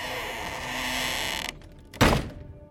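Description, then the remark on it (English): A wooden trapdoor groans open with a long, strained creak, then after a brief pause slams shut with a single heavy thud that rings out and fades. No voices. “And the trapdoor just lurches up and slams back over the other side.”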